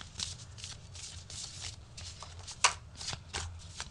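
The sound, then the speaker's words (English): A deck of cards being shuffled, a run of quick papery riffles and flutters with one sharper snap partway through, no voices over it. “I love that you're shuffling too.”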